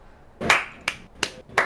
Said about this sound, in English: Who's clapping? Me.